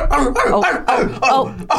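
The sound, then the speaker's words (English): A dog lets out a rapid run of short, muffled yips and soft barks, about half a dozen in under two seconds, barking in its sleep while dreaming. “Oh, he's having a little doggy dream.”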